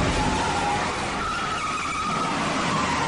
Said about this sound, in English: this is arguably one of the greatest car chases of all time